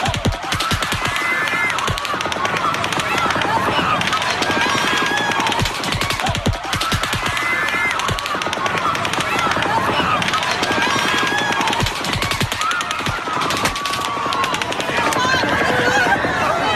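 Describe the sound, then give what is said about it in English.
Loud rifle gunfire recorded on a ground-level cell phone camera inside a concert venue: rapid bursts of sharp, cracking shots, many in quick succession with brief pauses between volleys, over a constant wash of crowd noise and voices. “First of all, you can see all of these spikes are rifle shots.”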